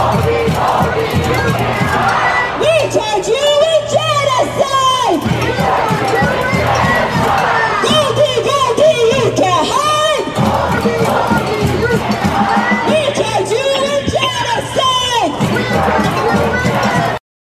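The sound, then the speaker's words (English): A large pro-Palestinian protest crowd chants loudly in unison at chef Michael Solomonov's restaurant, the rhythmic shouted phrases repeating in waves with brief swells and dips, accompanied by steady low drumming throughout. “And the people there vandalized the front door and the windows, and they were chanting this chant.”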